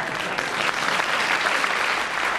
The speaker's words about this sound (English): Oh, applause. Do it again.